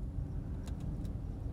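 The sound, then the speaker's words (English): Steady low rumble of cars driving past in traffic as people head home from work, a continuous dense road noise with a few brief higher hiss bursts as vehicles pass, no voices. “Wow, look at all the cars. Everyone's heading home from work.”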